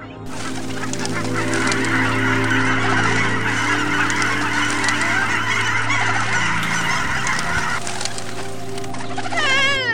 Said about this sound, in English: Help! Help! Cried the geese. We are caught in the hunter's net. Oh, what shall we do?